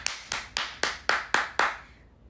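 A lone set of hand claps, seven sharp, bright smacks in a quick, steady rhythm, with no voices, before the clapping stops and fades out.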